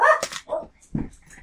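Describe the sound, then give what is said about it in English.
A few sharp barks from dogs in quick succession, followed by a lower, muffled bark, with brief pauses between them and no one talking. “Your dogs like it too.”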